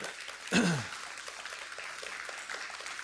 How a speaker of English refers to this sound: And what I would appreciate you doing is showing your appreciation for them. Just give them a round of applause if you don't mind.